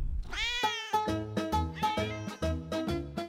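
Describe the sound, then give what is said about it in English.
In a sponsor advert for Pizza Cats, a pizza restaurant with cats, a loud, drawn-out cat meow rises in pitch, then gives way to a quick, rhythmic run of short, pitched meow-like notes that bounce along almost like a tune. No one speaks. “Do you like cats?”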